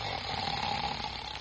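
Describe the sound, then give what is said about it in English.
A loud, rasping snore fills the moment, one continuous drawn-out breath with a droning buzz running through it, with no talking over it. “never mind snoring.”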